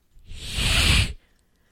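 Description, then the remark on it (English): A goose walking toward a man on a staircase lets out one sustained, breathy hiss lasting about a second, rising quickly to a strong rasping rush of air before cutting off abruptly, with no talking. “Do fucking geese hiss at you?”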